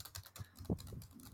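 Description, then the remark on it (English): Rapid, irregular clicking of keys on a computer keyboard as a man types at a desk in the reception area of a small local clinic, a steady flurry of soft taps with one slightly louder keystroke, heard on its own without any voices. “There's a dude sitting at the desk. He's like typing away.”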